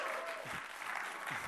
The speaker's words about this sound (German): Danke. Wenn ihr nachher immer noch klatscht, dann nein.